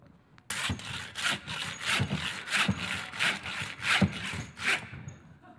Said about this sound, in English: Now, let me ask you, how free is this saw? How free is it? Was that genuine freedom? Sawing on a concrete block? Making sparks?